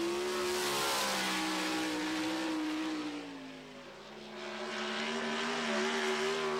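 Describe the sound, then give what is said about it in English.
A loud, high-revving 410 sprint car engine roars continuously, its pitch sliding down briefly then climbing back up as the car, driven by a 19-year-old, powers sideways around a dirt track. “He's 19 years old, and this is his 410 sprint car. Man, these things are terrifying.”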